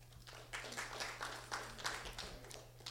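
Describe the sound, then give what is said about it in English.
An audience claps together to vote on which of two stories is the fake, in a soft, sustained patter of many overlapping hands lasting the whole moment, with a low steady hum running underneath and no voices. “And if you think the one on the right is in fact the fake, can you clap?”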